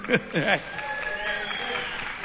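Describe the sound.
A crowd cheers and applauds, with a couple of loud voiced whoops at the start, then a steady wash of clapping and scattered shouts with a thin whistle running underneath.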